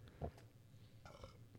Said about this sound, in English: Burp.